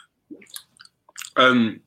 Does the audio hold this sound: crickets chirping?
no